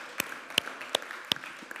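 Quiet audience applause at a church service for a man asked to stand up: a few sharp, evenly spaced claps stand out over soft, scattered clapping from the crowd, with no voices.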